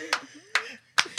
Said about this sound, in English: You need something with this tempo. With the Pentecostal clap.